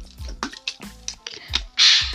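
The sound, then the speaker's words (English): Several wet swallows of water in a steady rhythm, ending in a breathy exhale after drinking. No talking. “let me explain after I drink this water.”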